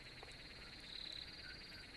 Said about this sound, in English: We got crickets in the background. We got the crickets. I think I mentioned putting crickets in my shit maybe like 3 months ago. We got them.